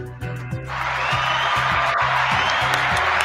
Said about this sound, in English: Oh, by the way, we didn't have an applause at the beginning. Can you just do an applause for us? Yeah, of course.